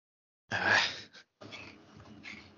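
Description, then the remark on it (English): One sharp, loud sneeze bursts out from a person with a congested left nostril, followed by a second of softer, breathy sniffling and exhaling. “Sorry, I just sneezed.”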